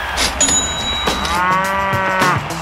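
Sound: cow mooing sound effect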